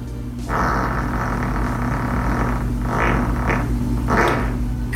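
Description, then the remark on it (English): A long, loud fart from a woman sitting on a sofa rumbles on for several seconds, a steady low buzzing drone with rougher sputtering bursts swelling in and out, and no voices. “That's as much of a fart that I could do in probably half a week.”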